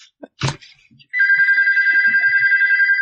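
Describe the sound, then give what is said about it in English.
A brief thump, then a phone starts ringing with a steady, warbling electronic trill that pulses rapidly and continues loudly until the end. “Oh, there's my phone.”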